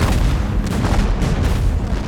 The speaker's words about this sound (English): The sound of cannon fire snapped her attention from the mighty dragon.